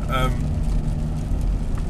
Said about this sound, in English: And you'll hear all sorts of car noises. I've already said that, haven't I? Car noises, coughs.